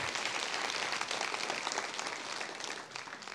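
A church audience applauds steadily to welcome visitors, many hands clapping at once in a dense, continuous wash of sound that holds loud throughout and eases slightly near the end.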